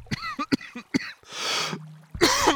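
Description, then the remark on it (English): A few croaky, gravelly vocal grunts from a person putting on a gravelly undead-monster voice give way to a long breathy rasp, then a harsh cough, caused by straining the voice, bursts out at the end. “Oh, my bugbear undead voice causes me to cough.”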